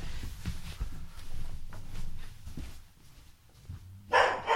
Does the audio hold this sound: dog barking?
yes